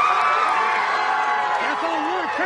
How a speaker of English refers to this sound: Outside the courtroom, a crowd erupted in cheers.